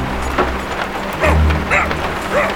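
A dog named Doggo lets out three short, whining barks and whimpers, spaced about half a second apart, on a sailboat at sea, over a steady wash of rain and a low rumbling storm.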